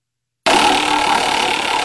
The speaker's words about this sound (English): And I'm going to just spin the fart wheel here, if you don't mind.